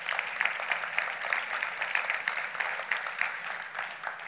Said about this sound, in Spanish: ¿Podemos darle un fuerte aplauso al Señor hoy?